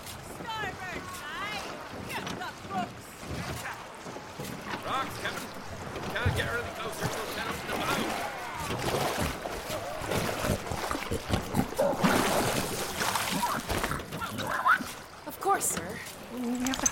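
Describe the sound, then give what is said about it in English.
A rowboat being rowed through water, with oars splashing and sloshing in an irregular rhythm. Voices talk over the watery churning throughout. “Keep rowing. I am, so help me. I'm trying.”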